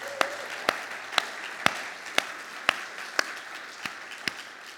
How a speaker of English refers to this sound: Can we give them a hand for them stepping out?